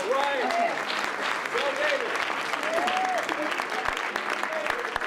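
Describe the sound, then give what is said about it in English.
An audience gives a rousing ovation at the end of the last film screening at the Mountain Film festival, dense overlapping clapping sustained at full volume throughout, with scattered whoops and voices cheering over it. “Rousing ovation at the end of our last showing. Rousing. They kept clapping.”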